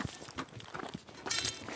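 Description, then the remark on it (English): A steady clip-clop of the hooves of Sniff the reindeer pulling a sledge along a narrow path through a dark forest at night at minus 20, past snow-covered trees. Soft, regular thuds are followed by a brief rush of hissing, scraping noise toward the end. No voices. “I'm driving a sledge through a dark forest at night with the help of Sniff the reindeer.”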